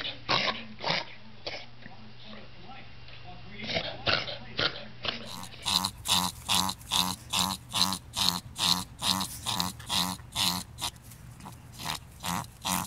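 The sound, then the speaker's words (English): A French bulldog's rapid, snorting reverse sneeze: a long run of harsh, honking gasps in quick rhythm, loud and rasping like repeated throat-clearing, with no talking over it. “It strikes me as like more of a like a hack, a clear your throat kind of a thing.”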